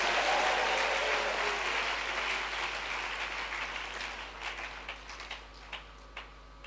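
An audience claps, starting as a dense, loud wash of applause that gradually thins out into a few scattered, separate claps before fading.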